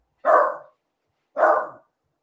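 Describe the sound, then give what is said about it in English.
Two loud dog barks ring out, evenly spaced about a second apart, each a short burst with a quick fade and silence between them. “You're on mute and the dog's going.”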